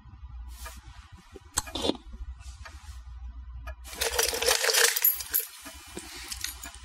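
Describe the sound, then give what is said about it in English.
A few scattered metallic clinks, then a louder burst of keys jangling and rattling as a hand rummages through a gigantic punch bowl full of keys, picking them out, settling into lighter clinking. “Okay, so yeah, the keys are literally all picked from a bowl, exactly the way that you hear there.”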